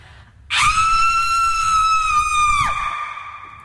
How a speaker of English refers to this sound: Do a scream. Go on. Let me get a bit of reverb on this.